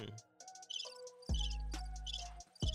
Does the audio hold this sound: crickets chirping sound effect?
yes